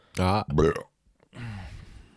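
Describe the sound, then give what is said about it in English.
A croaky, inhaled burp: two short throaty gulps, a brief pause, then a longer, rougher rasping intake of air. “Did you just inhale a burp?”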